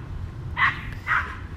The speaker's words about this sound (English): So I got lots of dogs barking now.